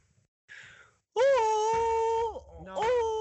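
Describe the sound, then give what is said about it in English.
A person imitates a Sasquatch call: after a quick breathy intake, a loud, sustained high-pitched yell holds steady, sags away, then a second rising yell starts. “Basically, a Sasquatch call is basically a high-pitched yell.”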